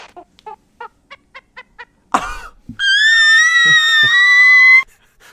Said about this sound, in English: I try to find Donkey Kong bell sound effects. That's what I found. Oh, I remember that from Donkey Kong Country.